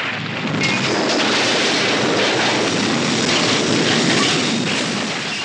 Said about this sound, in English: We must have a train crash clip somewhere.